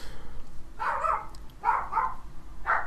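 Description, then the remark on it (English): Dogs barking in three quick bursts, the first two doubled, a short pause before the last. They are muffled and moderately quiet, with no one talking. “Dog. Special guest appearance, my dogs.”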